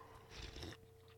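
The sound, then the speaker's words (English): A short sip from a drink, a brief wet slurp lasting about half a second against a quiet background hum, with no talking. “So I'm going to have another sip because this one's going to be, this is a rabbit hole here.”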